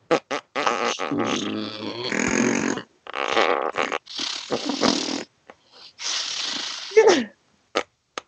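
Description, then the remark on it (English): A person makes a string of blubbery, sputtering mouth noises imitating a truck farting, with rumbly low bursts and brief pauses, loud, ending in a few short pops. “This truck farts.”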